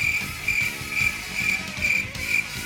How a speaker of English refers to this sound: Yes, I will put crickets right here